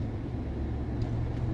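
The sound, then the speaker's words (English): Steady low rumble of a car interior while driving, with a constant wash of wind hitting the windshield and road noise, and no voices. “That I'm driving through right now as the wind passes, hits my windshield and envelops the car and trails behind me.”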